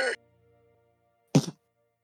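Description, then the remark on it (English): A short, sharp shriek from a boar cuts off at once as it is speared with one sharp thrust. A faint low hum follows, then after a pause a single heavy thud lands. “just one quick shriek and then a thud.”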